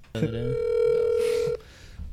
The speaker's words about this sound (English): All right, we're really calling mom right now. Yep, phone is ringing.